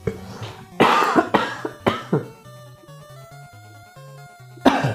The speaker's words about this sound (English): Hold on just a second. I apologize. I'm still kind of getting over a little something. I'm about to cough my head off. So excuse me, everyone.